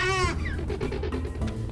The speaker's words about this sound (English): classic raptor noise. Yeah, so it's like a cough almost.